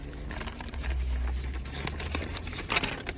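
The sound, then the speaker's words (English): A sheet of paper with written notes rustles and crinkles in a run of irregular, scratchy bursts as it is searched for and handled, over a low steady hum, with a sharper crackle near the end and no voices. “Sorry if this paper is loud.”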